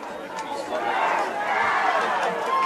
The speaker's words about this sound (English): Charger fans are excited down there. You hear them screaming. We still got our student section standing up. Pep Band has put down their instruments to cheer. For the team, no music needed.